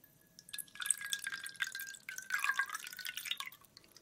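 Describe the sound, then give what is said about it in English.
A large drink is poured into a glass in one steady stream of about three seconds, a splashing trickle whose ringing tone rises as the glass fills. Fairly quiet, with no voices. “Then I'll pour you one.”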